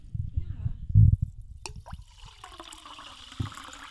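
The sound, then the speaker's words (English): Fizzy seltzer water pours steadily from a bottle into a glass for a couple of seconds after a brief clink, the stream clear, with low muffled voices and thumps just before it. “almost poured out the whole seltzer water without even asking me if I wanted more.”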